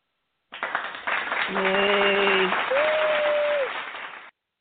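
A steady burst of applause lasting about four seconds, many hands clapping at an even level, with a couple of brief tonal whoops rising over it midway before the clapping cuts off.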